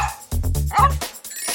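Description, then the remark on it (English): A dog, one of the real dogs from the film Strays at its red carpet celebration, lets out a quick run of three or four short barks and yips, bunched together in under a second, with no talking. “They celebrated with a red carpet for the real dogs from the film.”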